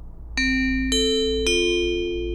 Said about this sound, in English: You will know when the drill has been initiated when this chime plays.